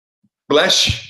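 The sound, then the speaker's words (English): A single loud sneeze bursts out suddenly, a harsh breathy blast lasting about half a second with a short thump near its end, then silence. No one speaks. “Bless you.”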